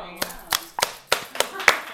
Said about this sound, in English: That rattle is the sound of my handcuffs.